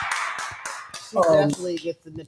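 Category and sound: crowd, hand clapping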